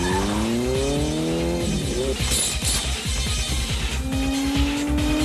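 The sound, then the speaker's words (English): Loud motorcycle racing engines whine and rev during a motorcycle race in a film scene, their pitch sweeping up and down, with bursts of screeching tire squeal over a constant rumbling roar and no talking. “they're doing a motorcycle race.”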